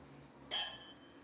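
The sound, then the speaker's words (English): A single bright clink of wine glasses touching in a toast celebrating the end of the year, clear, with a ringing tone that fades over about half a second; no talking. “And then we are celebrating the end of the year with wine.”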